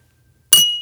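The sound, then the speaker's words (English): A single bright clink of glasses tapped together in a toast, fairly loud, with a clear ringing tone that hangs and slowly fades after a moment of silence. “Oh, your clinking sounds terrible. My clinking's expert, pure fucking expert.”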